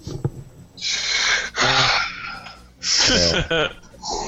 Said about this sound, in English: Breathing hard.